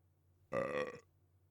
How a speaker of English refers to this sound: While unlocking her bike, she forced a satisfyingly bassy, carbonated burp.